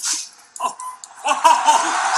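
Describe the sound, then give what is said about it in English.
A dog barks in a quick run of short, sharp yips, building into a denser flurry of excited barking toward the end, with no voices present. “No, they're barking.”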